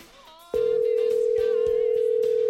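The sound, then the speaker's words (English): A phone call tone, from a radio show host calling guest Jay Cottrell, comes in abruptly and holds as a single steady, loud pitch with no breaks, after a brief softer stretch of other sound at the start. “Let's give Jay a call right now.”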